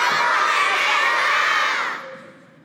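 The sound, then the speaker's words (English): A crowd of children yells "come on" together toward a door in one loud, sustained burst of shouting lasting about two seconds, then trails off quickly into quieter scattered voices. “When I count to three, I want everybody to this door and yell out, come on, Azza”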